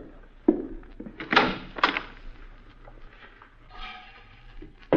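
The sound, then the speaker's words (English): A closet door is opened: a sharp knock and a couple of wooden clunks in quick succession, then a quieter rattling, sliding noise toward the end. No one speaks. “I'll check the closet.”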